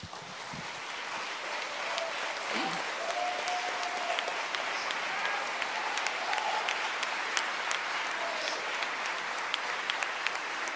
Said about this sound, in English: When that moment comes to mind, I want you to applaud. We're going to thank God for his faithfulness.